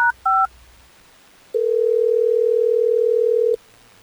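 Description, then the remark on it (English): Two quick keypad dialing beeps, then a pause and a single steady two-second ringback tone of an outgoing phone call ringing, clear, with no voices; radio hosts at Hot 101.5 are calling a listener on air. “Well, let's get Bree on the phone so we can figure this out, Jason.”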